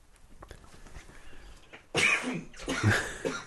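After a quiet stretch, someone breaks into a harsh, sputtering coughing fit: a loud burst followed by a couple more rough, choking coughs as a sip of beer goes down the wrong way.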